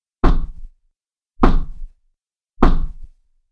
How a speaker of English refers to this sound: A hand struck upon the oaken door, three times knocking.